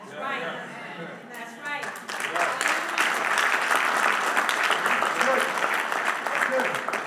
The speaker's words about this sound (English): I got more claps.